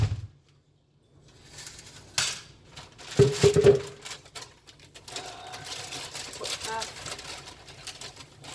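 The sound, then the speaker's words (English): Hard plastic clatter and knocking as a blender container is handled and set down, with a brief louder burst of rattling midway and a voice murmuring faintly underneath. “Blender thingy, not container.”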